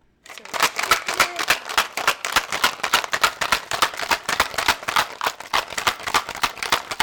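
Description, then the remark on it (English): Ice rattles hard and fast inside a cocktail shaker with vodka, vermouth, lime juice and lavender simple syrup, a steady stream of sharp, bright clicks and clatters that keeps a quick, even rhythm for several seconds with no voices. “So in a cocktail shaker, you're going to combine the ice, the vodka, the vermouth, the lime juice, and the lavender simple syrup.”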